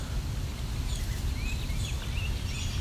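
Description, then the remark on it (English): A rose-breasted grosbeak song: short sweet warbled whistles, broken into a few phrases beneath steady outdoor rumble and rustling. No one speaks. “I think a rose-breasted grosbeak is singing here.”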